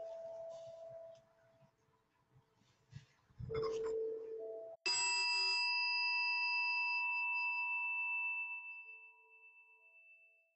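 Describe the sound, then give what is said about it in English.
A single meditation chime is struck at the end of a guided loving-kindness meditation, ringing out bright and clear with a long shimmering sustain that slowly fades over several seconds. Faint, muffled sounds come just before the strike. “Allowing the sound of the chime to call you back to wherever you may be, perhaps looking around, opening the eyes, re-engaging with whatever setting you're in, continuing to feel love and kindness, calm, safe, and secure.”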